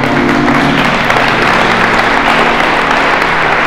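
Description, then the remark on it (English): A crowd at a church worship service claps for the worship team, a steady, dense and continuous applause and a bright wash of many hands lasting the whole stretch. A low sustained tone hums underneath, with no voices. “Can we give the team a round of applause?”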